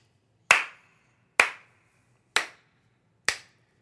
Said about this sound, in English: Here, let's stop and give you a little bit of a round of applause.